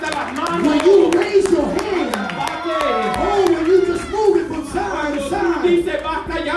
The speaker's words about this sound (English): Aleluya, usted da un aplauso de gloria y honra al Señor. You give an applause of glory and honor to God.